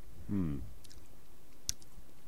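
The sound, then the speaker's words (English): Someone chewing a McDonald's cheeseburger: a brief muffled hum through a full mouth, then a few soft, sticky mouth clicks against a quiet background. “Oh, it's like chewing on a rubber ball. Nice McDonald's cheeseburger.”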